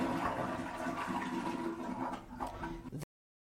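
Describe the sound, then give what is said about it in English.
A toilet flushes loudly, a steady rushing of water lasting about three seconds before cutting off abruptly, with no voices over it. “We've always had the famous COVID flush.”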